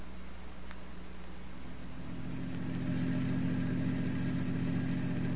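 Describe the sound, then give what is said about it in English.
A car engine, the car waiting at the curb, runs steadily with a low, droning hum that grows a little louder and fuller partway through, as if revving up or pulling away. No one speaks. “My car's at the curb. Let's go.”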